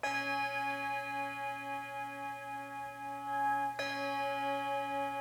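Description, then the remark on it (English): A single bell, rung the normal way, rings out with a rich stack of sustained harmonic overtones, then is struck again near the end, the tone blooming fresh and lingering steadily, clear with no talking. “Can you hear all of them when I just ring it the normal way?”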